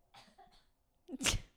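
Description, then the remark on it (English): One sharp, loud cough bursts out after a second of faint, breathy vocal noises, harsh and explosive, then fades quickly. “My coughers laugh earlier just really fucked me up.”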